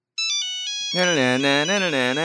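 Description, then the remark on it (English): The classic 1994 Nokia mobile phone ringtone plays as a quick run of bright, beeping electronic notes. After about a second a loud, wavering voice takes over and keeps going. “The Nokia ringtone.”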